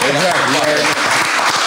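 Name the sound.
people clapping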